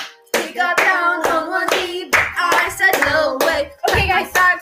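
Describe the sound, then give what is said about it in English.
Steady rhythmic hand claps, roughly two per second, loud and sharp, over a sustained tonal backing that keeps time with them. “Clap your hands, I'm here!”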